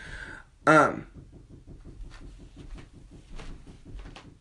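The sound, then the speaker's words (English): A single loud, sharp knock like a rap on a wooden door, ringing briefly, followed by quieter background talking and faint rustling. “I thought that somebody was at the door. I'm just like, why is somebody knocking at the front door?”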